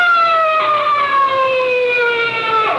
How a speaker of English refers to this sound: Listen. Hey, that's a police siren. Sounds like they're almost on top of us. Yes, there they are. Look out, they're going to pass us. Pass nothing, they're flagging me down.